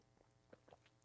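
Quiet wet mouth noises of someone sipping coffee at 10:19 p.m., a few soft smacks followed by one brief, louder slurp at the end. No talking.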